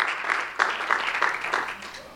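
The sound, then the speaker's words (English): A crowd applauds steadily for a woman called up from the audience, many hands clapping in a dense, crackling wash with small swells, moderately loud and with no one speaking over it. “Let's give her a hand.”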